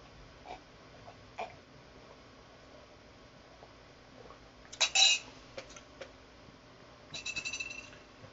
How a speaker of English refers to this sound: This is, hold on, I gotta take a sip of tea for this one.